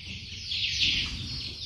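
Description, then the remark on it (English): A steady, dense chorus of chickens clucking and chirping all at once, being reared by a security man inside an unused government crop-storage warehouse, a continuous high-pitched chatter with a low rumbling hum underneath and no talking. “The government has not put the warehouse to use, so the security man there has started rearing chicken in the warehouse.”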